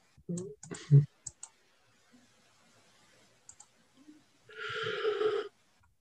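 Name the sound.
person yawning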